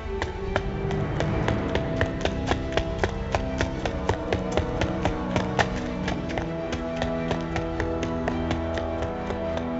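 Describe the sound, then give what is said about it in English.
Rapid footsteps run down an empty hallway at a steady, quick pace, each step a sharp tap, continuing for the whole stretch over a low sustained tonal hum, with no voices. “And then on pure instinct, I run for the door and fling it open and barrel down the empty hallway like a startled deer.”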